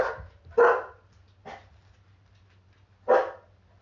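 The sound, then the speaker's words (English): A dog barks in short, sharp bursts, about four barks spaced unevenly over a few seconds, loud, with a low steady hum underneath and no talking. “I'm on vacation. There are dogs.”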